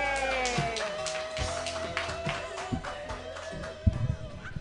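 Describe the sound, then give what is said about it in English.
A comedy show audience applauds to welcome the next comedian, a steady wash of many hands clapping, mixed with a sustained tonal, music-like hum underneath. A few sharper claps stand out near the end. “Clap your hands for your next comedian, everybody.”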